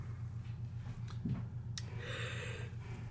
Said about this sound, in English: Yawning is contagious.